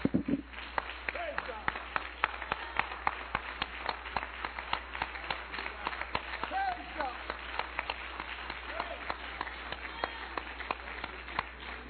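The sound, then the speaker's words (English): An audience stands and claps their hands for God in a dense, sustained burst of applause lasting the whole stretch, with scattered voices calling out faintly underneath. “Let's give Him a hand clap as you stand with me.”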